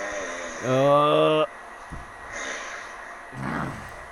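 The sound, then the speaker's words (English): A father's loud, buzzing snore with a rising tone lasts under a second, followed by two softer, raspy breaths at a slow, steady rhythm, heard through the night. “This is what I had to sleep through all night.”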